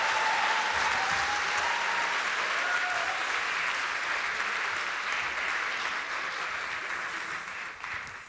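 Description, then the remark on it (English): Sustained applause from a crowd welcoming girls up on stage, a dense, steady clatter of many hands clapping that holds for several seconds before gradually thinning out at the end. “Please welcome the girls up. Come on, big round of applause.”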